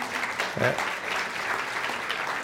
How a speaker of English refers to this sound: And just want to give a thanks to all the for those who labored so well for the Vacation Bible School this week. It was an awesome week. The team did a great job. You're allowed to clap for that.